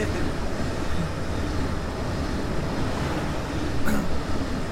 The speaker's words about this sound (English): Some of the trains are longer than others. Oh, that was a short one.